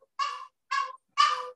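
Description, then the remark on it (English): A dog barks three times in a steady rhythm, each bark harsh, raspy and fairly high-pitched, with short silences between them and no talking. “You can hear my dog.”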